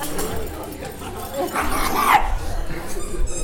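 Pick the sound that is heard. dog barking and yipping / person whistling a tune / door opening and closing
dog barking and yipping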